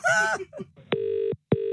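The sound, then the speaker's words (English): A short burst of voice gives way to a phone line's electronic tones as a call is placed back to someone who hung up: a steady beep lasting under half a second, a brief gap, then another beginning, clear. “He's hung up, I'll call him back.”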